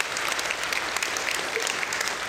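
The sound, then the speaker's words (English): An audience breaks into steady applause, a dense wash of many hands clapping at a constant level from start to finish with no one speaking. “You should give yourself a round of applause.”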